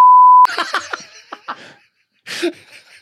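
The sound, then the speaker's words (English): A single loud, steady censor bleep lasts about half a second, then cuts straight into bursts of rhythmic laughter, with a brief gasping laugh near the end. “We're going to have to beep that.”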